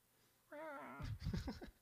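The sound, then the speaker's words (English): A voice mimics cat-like baby talk: a drawn-out, wavering meow-like whine, then a quick burst of babbling, cooing syllables, fairly loud. “That's borderline cat talk, but he's got a bunch of those, so maybe he meows too.”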